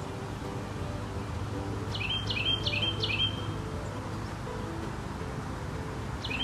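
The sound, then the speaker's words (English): A bird chirps in a backyard in a quick run of four bright, identical notes, then one more call near the end, over a steady low outdoor hum with no one talking. “We were on our way to the backyard when this guy started chirping.”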